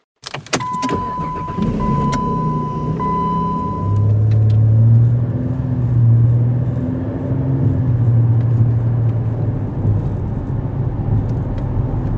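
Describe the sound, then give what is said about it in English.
A car drives along steadily on a road trip toward Minneapolis, its engine droning in a low, continuous rumble with tire and road noise, shifting pitch as it accelerates; fairly loud, with no talking. “Passing cars on these road trips is always an interesting thing.”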